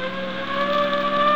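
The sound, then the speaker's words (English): A police siren from pursuing police holds a steady, piercing wail for about a second and a half, its pitch edging slightly upward, over a low rumble of motor noise with no voices. “It's coppers, all right. There's a siren.”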